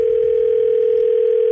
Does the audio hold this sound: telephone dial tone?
yes